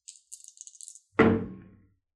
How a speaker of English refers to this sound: Let's go ahead and roll. Roll me some percentage dice